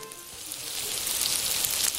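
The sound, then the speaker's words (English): A Beyond Meat plant-based patty sizzles steadily in a hot pan, a continuous hissing crackle that builds slightly over two seconds, with no voices. “It sure does sound like meat sizzling on a pan.”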